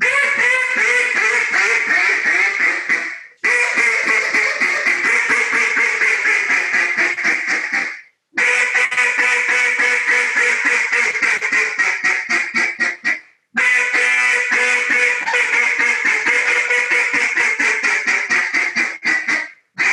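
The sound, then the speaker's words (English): A duck call blown in rapid, loud, raspy quacking runs, four long sequences broken by brief pauses, continuous, mimicking a hen duck's chatter. “Yeah, I can blow the live duck.”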